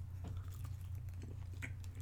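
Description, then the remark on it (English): Someone bites into a chocolate candy very close to the mic, with a few soft, muffled bites and chewing sounds over a steady low hum and no talking. “Well, I don't think this is gonna crunch.”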